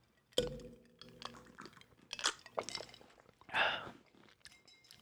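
A sharp glass clink rings out briefly, followed by a series of soft sips and wet slurps of eggnog from drinking glasses, with no talking.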